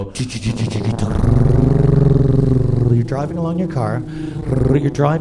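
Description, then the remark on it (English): A person vocally imitates a tiny clown car being driven, making a sustained buzzing rumble that revs and wobbles in pitch, then breaks into sputtering, rising vroom sounds, fairly loud. “Oh, it's a little clown car by the looks of it. A little tiny car.”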